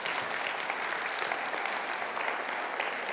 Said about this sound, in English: Shepherd, it's time for you to make your way off the stage. Give Shepherd a round of applause.